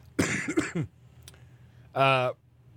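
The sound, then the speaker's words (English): A rough, throaty cough bursts out, followed after a brief pause by a short voiced hum or grunt, with quiet background noise in between. “Yeah, the cough in the middle of it.”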